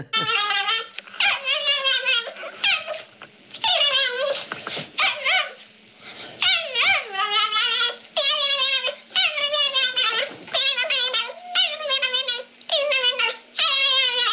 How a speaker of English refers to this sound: Oh, so be quiet so I can play those yapping dog sound clips.